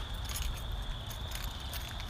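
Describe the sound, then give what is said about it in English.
Keys jangle in a few short, bright metallic bursts as someone searches for them, over a steady low rumble and a faint high-pitched whine. “I'm trying to find my keys.”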